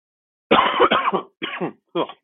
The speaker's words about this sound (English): Sorry, not trying to cough in y'all's ears, guys.